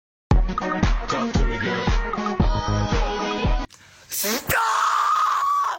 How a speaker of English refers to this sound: That primal scream is so relatable.